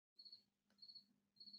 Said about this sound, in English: Well, I love the crickets in the background. It just makes for you. There are crickets in my basement. My cat hunts them every night.